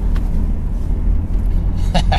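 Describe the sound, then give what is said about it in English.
Steady low rumble of road and engine noise from inside a moving car being driven to the barber, about a mile and a half from the office, fairly loud and constant, with a couple of brief soft clicks near the start and end. “So, anyway, that's why I'm in a car, because I really haven't figured out how to get to the barber from my office.”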